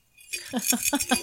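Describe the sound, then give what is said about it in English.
A sheet metal wind chime jingles and clanks about four times in quick succession, its bright, shimmering metallic ring sustaining between strikes at a fairly loud level. “Ooh, hear that? $3. Ooh, it's a wind chime. It's it's real sheet metal.”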